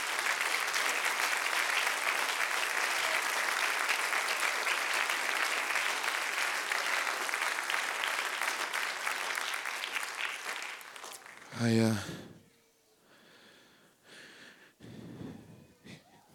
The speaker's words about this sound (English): Can you clap your hands to the Lord for a moment?